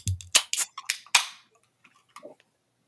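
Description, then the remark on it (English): Beer cans, including Wellington Brewery's Raked Over and Nickelbrook's 5.6% Zap Pink Lemonade Sour IPA, being cracked open: a quick series of sharp snapping pops, the last followed by a short fizzing hiss, then faint quiet clinks and rustles. “Should we crack a lap? Yeah, let's crack into these.”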